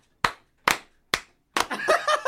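In an office, three sharp, evenly spaced hand claps ring out, then a fourth clap runs into a brief burst of laughter-like vocal sound and shuffling noise.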